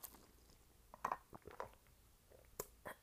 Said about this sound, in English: At first, I was going to try to make it where you couldn't hear me drinking the water. But then I was like, no, I want you to hear the gulp of the water going down my throat. My esophagus, if you will.